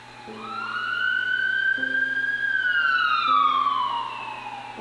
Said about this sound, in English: oh, another ambulance. What a busy day it must be.